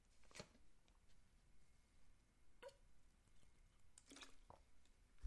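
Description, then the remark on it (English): Someone takes a swig of water: a few soft, wet gulping and swallowing sounds with small bottle clicks, fairly quiet, with no talking. “Let me take a swig of water here.”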